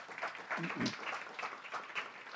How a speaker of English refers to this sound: So all you hardworking moms deserve applause. So. Entonces, todas sus mamás muy trabajadoras ya un aplauso.